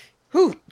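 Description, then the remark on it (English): A single short sneeze, a sharp voiced burst rising and falling in pitch over about a quarter second, with a faint breathy sound just before and after it. “God bless you.”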